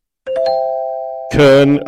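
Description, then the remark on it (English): A loud bell-like chime rings out with a sustained, steady tone, then swells into a brighter, fuller burst near the end, like a game-show correct-answer sound effect. “Was it bell or buzzer?”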